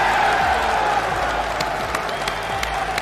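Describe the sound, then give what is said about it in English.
A large crowd applauds steadily for a few seconds after a call for a round of applause for Russia. Many hands clap at once in a dense, loud wash, with scattered sharper claps and faint cheering mixed in. “And can we give a round of applause for Russia?”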